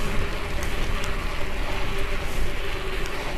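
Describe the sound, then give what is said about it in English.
Heavy rain pours down in a dense, unbroken hiss, steady and fairly loud throughout, with a low rumbling undertone and a faint steady hum beneath it. “Whoa, it's starting to rain hard now.”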